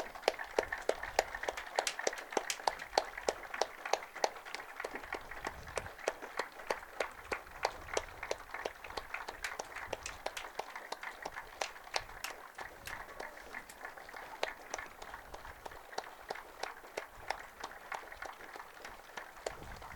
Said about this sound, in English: He was a very happy person, so it is fitting to have this life celebrated with a moment of applause. Starting now.